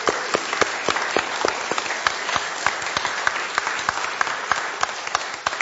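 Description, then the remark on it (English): A church audience applauds together after a service to celebrate a couple's 30th wedding anniversary, a dense, steady wash of many hands clapping at once with sharper individual claps standing out, sustained at an even level for several seconds. “So, round of applause.”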